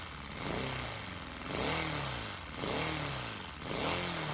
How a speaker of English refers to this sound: Wow, man. That sounds better than my car. That's a little Lego engine. So it says the creator mentions the crankcase is a 3D printed part. Wow. That sounds like some of the little Hondas that I see running around town.